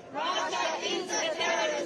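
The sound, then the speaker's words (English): A crowd of protesters outside the Russian embassy in Washington, D.C., in solidarity with Ukraine on the one-year anniversary of Russia's invasion, chanting together in loud, sustained unison, their massed voices rising and falling in a steady rhythm with no single speaker standing out. “Protesters joined in solidarity for Ukraine on the one-year anniversary of Russia's invasion.”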